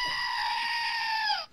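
goat screaming

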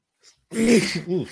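sneeze

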